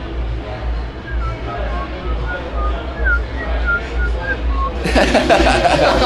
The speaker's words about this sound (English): Would you mind whistling it for us now? Well, here we go.